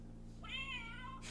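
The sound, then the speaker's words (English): A single drawn-out cat meow sound effect, played from an opened Exploding Kittens card game box, fairly clear, rising then falling in pitch, over a steady low electrical hum, with no talking. “Go ahead, open it so we can play the sound effect on the”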